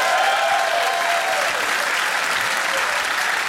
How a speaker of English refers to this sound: How many people agree with me by applause that I'm right?